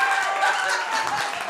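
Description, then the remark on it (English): A crowd applauds steadily and fairly loudly for the whole stretch, a dense wash of clapping with faint voices and cheers mixed in underneath. “Of what you should have done tonight, which is applaud the presence of the show.”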